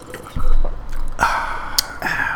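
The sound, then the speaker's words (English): Someone drinks water, with several wet gulps and swallows over a couple of seconds and faint liquid squishes between them. No one speaks. “Can you listen to me drinking water?”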